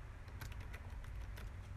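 Quick, irregular clicks of someone typing on a computer keyboard, a soft patter of keystrokes over a low background hum, with no talking.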